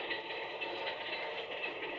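A steady, continuous rumble of a train moving along the rails, an even wash of mechanical noise with no breaks, heard from inside the train at a moderate level with no voices.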